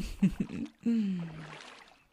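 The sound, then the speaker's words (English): Someone lowers into pool water: two low sloshing swishes, then a soft, falling voiced sigh over gentle lapping and trickling water that fades out. “Now that you're all set, if you don't mind, I'm going to take a little dip in the pool.”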